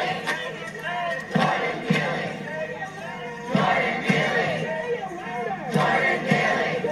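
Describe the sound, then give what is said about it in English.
A large crowd chants in unison, the same phrase repeating in rhythmic surges roughly every two seconds, loud and steady with many voices blending together. “All kind of just bumbling along, some of them just head down, mindlessly doing all the same chanting.”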